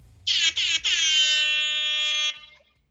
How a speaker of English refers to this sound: What was that? That was an air horn.